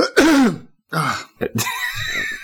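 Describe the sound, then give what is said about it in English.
A person clears their throat in a few rough, raspy bursts, ending with a drawn-out breathy rasp. No words are spoken. “Right, I'll try not to cough and splutter my way through this one.”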